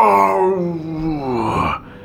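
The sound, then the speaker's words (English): A person imitates a howl with a long, loud, drawn-out wavering vocal tone that bends in pitch for nearly two seconds before breaking off abruptly. “You hear the crunch of snow outside. Crunch. A howl.”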